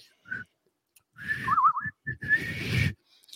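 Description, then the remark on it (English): A weak, breathy attempt at whistling with the lips by a person whose Bell's palsy took away the ability to whistle: a few thin, wavering tones sputter out amid loud airy blowing, stopping and starting over about three seconds. “Ever since I got Bell's palsy, I lost the ability to whistle.”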